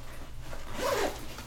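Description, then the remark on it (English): A backpack zipper is pulled closed in one continuous rasping stroke, close to the mic, swelling in the middle before trailing off, with a low hum in the background. “With the backpack is already open, but I'm going to zip it closed and then reopen it.”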